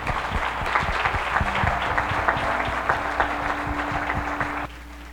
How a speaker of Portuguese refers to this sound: Você pode aplaudir o Senhor pela sua palavra nessa manhã, meu irmão.